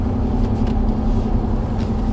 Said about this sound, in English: Oh, is that a train? Like a passenger train? Yeah, that's like the Amtrak's.